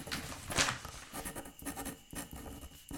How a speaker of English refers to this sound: Pens are scratching.